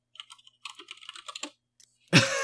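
Rapid, uneven clacking of keys on a mechanical keyboard, moderately loud, runs for about a second and a half, pauses, then a louder burst of sound cuts in at the end.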